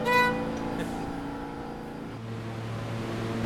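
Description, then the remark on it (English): A subway train drones in B flat with a steady, buzzing hum of stacked tones over a low rumble. The pitch holds fairly even, shifting slightly partway through, with no voices. “You hear it? The sound of the train, B flat.”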